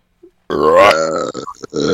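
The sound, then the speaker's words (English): A loud, drawn-out burp rumbles straight into the microphone, croaky and low with a rising gurgle, breaking into a few choppy bursts before trailing off. “So we should wrap this up, because now we're just burping the microphone and not producing anything worth listening to.”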